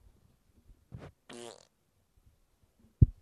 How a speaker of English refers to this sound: I'm sure my Zoom settings... fuck that up, but I just farted into the microphone at you